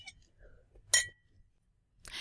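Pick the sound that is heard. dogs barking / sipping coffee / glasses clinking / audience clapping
glasses clinking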